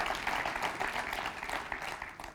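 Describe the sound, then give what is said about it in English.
An audience breaks into steady applause, a dense wash of many hands clapping at once with scattered cheers mixed in, holding at a fairly loud, even level for a couple of seconds without any speech. “So you ought to be cheering for that.”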